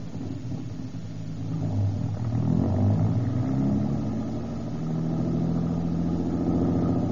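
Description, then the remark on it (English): A car engine revs up and pulls away, a steady low rumble rising in pitch as it accelerates, continuous with no voices. “Hop in. Where do we go now? Just up the street away, out of the general's line of vision.”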